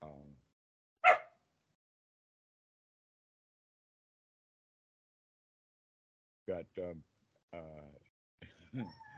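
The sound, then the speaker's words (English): Dogs bark and whimper at a door, two big dogs blocking it: a brief whine, then a single sharp bark, then a long quiet gap before a cluster of short, high whimpering yelps near the end. “doggy society happening right now. Two big dogs are blocking the door and a little in.”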